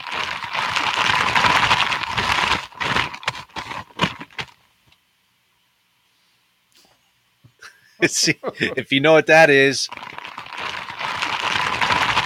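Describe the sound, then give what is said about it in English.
Crisp wrapping paper crinkles and rustles in dense bursts as a gift is being wrapped, then falls silent; after a brief spoken line, the papery crackling resumes steadily. “It is wrapping paper, or wrapping a present, wrapping a gift is what that was.”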